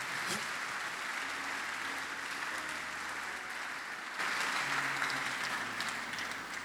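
A crowd claps steadily in a dense, continuous patter, the applause swelling a little louder toward the end, with faint murmuring voices underneath.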